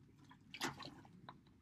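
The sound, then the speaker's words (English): A quiet sip of water: one wet slurp followed by a few small liquid clicks and swallowing sounds, with no talking. “Sorry about that. I just had to rehydrate there.”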